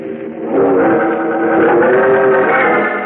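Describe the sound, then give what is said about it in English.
A car engine, the Batmobile, hums loudly and steadily for a few seconds, its droning tone climbing slightly in pitch as it comes racing down the street in the dark with its headlights on, with no voices present. “As the sleek, streamlined car drives to a stop in front of him,”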